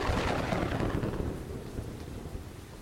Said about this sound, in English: General Ulysses S. Grant is hunkered down at his headquarters at Savannah, Tennessee. Yes, Tennessee. You heard that right. As a storm rages.